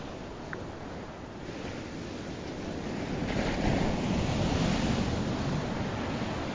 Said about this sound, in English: and there's nothing that soothes me or makes me feel more relaxed and more in tune, and the cadence of it just inspires me. And I like sitting there in the quiet and just listening to the beach and the waves. And that's my favorite sound.